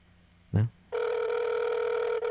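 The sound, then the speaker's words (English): A soft thump, then a steady electronic ringback tone from an outgoing phone call, holding loud and even for about a second and a half with a brief break near the end. “Don't pick up the phone.”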